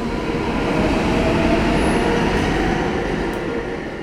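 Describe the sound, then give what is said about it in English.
A subway train rumbles steadily along the tracks, a loud, continuous roar of wheels and motor with faint high squeals, with no voices. “It was the city's then mayor, Abram Stevens Hewitt, who put forward a plan for an underground subway system that theoretically would ensure that no natural disaster would ever grind the city to a halt again.”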